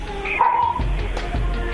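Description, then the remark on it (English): A dog barks and yips in a quick burst, with a high whining tone mixed in, over a low background rumble. “Still barking.”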